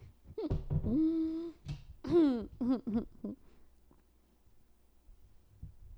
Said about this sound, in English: Oh, my God. Did you hear me swallow that? I put the microphone up to my throat and swallowed water.